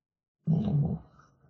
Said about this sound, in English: Sorry, let me clear my throat.